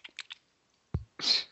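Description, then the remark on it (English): A few quick wet mouth clicks, then a sharp pop and a short, hissy slurp, all fairly quiet, with no talking. “She's chewing it? No, that was slurping.”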